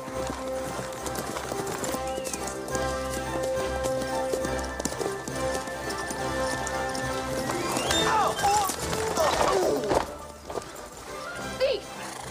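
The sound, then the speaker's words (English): Hooves clip-clop in a steady rhythm and a horse lets out a loud, wavering neigh toward the end as a supposed thief takes the horse in an orchard, with voices and other scuffling noises mixed in. “Teach you to steal my father's horse.”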